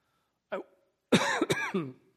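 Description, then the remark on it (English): A short throat-clearing cough, then a moment later a harsher, longer burst of coughing with a couple of sharp hacks, fairly loud with no talking. “I'm sorry, that was a bad point to get a cough.”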